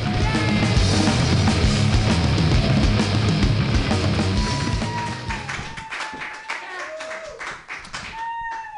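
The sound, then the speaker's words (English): A comedy show audience claps wildly in a dense, loud burst of applause that holds steady for several seconds, then thins out and fades as a few high whoops and whistles ring over it. “Clap wildly right now.”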